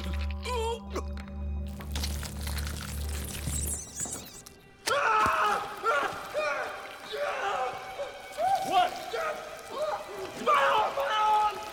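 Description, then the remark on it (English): A low droning hum gives way to a sudden wet, squelching impact of an arrow going into a body, followed by strained vocal sounds and groans that continue over the rest of the scene. “I hate the schlooping noise of the arrow going into Kira's body.”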